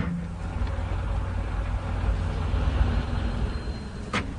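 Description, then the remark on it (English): Steady rumble of car and lorry traffic at traffic lights, heavy engines droning low throughout, with a short sharp hiss like an air brake just before the end. No one speaks. “Pull behind that lorry at the traffic lights. Get into the curb if you can.”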